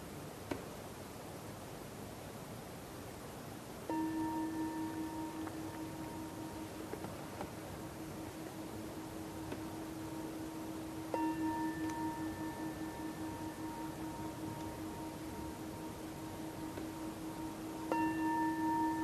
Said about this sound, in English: And then noticing what happens to you, what happens to awareness, to activities of the mind, when I ring the bell to end this sitting.